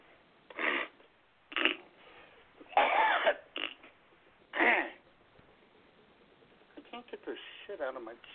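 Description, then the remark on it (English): A series of short, strained coughing bursts and rough throat clearing as someone tries to get out one good cough, several separate efforts spaced a second or so apart, fairly loud, followed by some quieter mouth noises. “I need one good cough, and I can't get it.”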